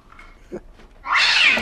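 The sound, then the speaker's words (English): A cat lets out a loud, harsh, shrill yowl that bursts in abruptly after a brief quiet stretch, with no one talking. “Let's not keep moving, because there is an insane cat down here.”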